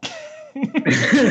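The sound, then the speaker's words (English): A forceful nasal snort blowing snow out of the nose, a sharp burst of air, followed by a couple of shorter breathy huffs. Fairly loud, with no talking. “I just blew snow out of my nose.”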